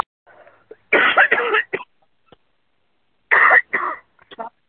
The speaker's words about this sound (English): I didn't realize I was going to get a cough fit. So I got a tickle in the back of my throat.